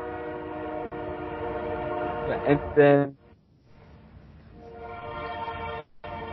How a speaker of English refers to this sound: There's a train going by. Yeah, I think we should probably wait for it to go by and then keep recording.